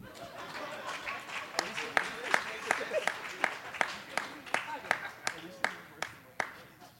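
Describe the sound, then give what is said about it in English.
Audience applause in a steady, even rhythm of sharp claps, roughly two or three per second, ringing out over a low murmur of crowd chatter. “Give it up. Round of applause.”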